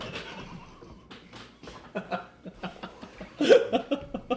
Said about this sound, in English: It's all this dog of Bray Wyatt and my farting machine. I was saving it for a moment.